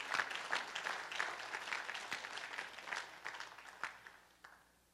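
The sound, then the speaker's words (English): A crowd gives God a big clap offering, breaking into steady, dense applause, many hands clapping at once in a continuous bright patter that holds fairly level before thinning out toward the end. “Come on, somebody, give God a big clap offering right about there.”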